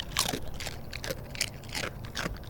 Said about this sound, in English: But also the sounds of my dog eating a tortilla chip from Chipotle, which my wife says is the perfect sound.